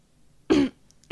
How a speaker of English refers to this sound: behind you, coughing.